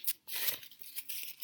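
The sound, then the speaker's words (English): Thin paper rips as mail is opened, in a few quick, papery rasps: a short tear followed by a longer drawn-out one, fairly quiet with no voices. “It's supposed to sound It sounds thinner today, Mike.”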